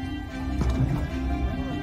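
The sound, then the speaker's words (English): Dramatic music opening a video clip swells with sustained, droning low tones and layered harmonics, holding at a steady, fairly loud level, with a brief rumbling accent partway through. “Now, of course, they have to open with the dramatic music.”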